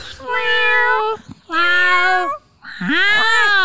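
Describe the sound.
A person imitates a cat with three loud, drawn-out meows, each about a second long with short pauses between; the last one dips low before rising into a whiny pitch.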